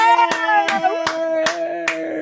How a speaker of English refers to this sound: And usually about this time is when my son would walk in and go, "Why are you clapping?"